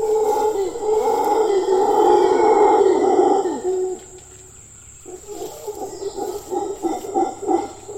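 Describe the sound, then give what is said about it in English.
Deep, roaring howls from howler monkeys swell loudly for a few seconds, then give way to a rhythmic run of shorter grunting calls, over a steady high insect drone. “And I think it's something that birds in particular, but also things like howler monkeys, they understand this, and the power of their voices is pretty intense.”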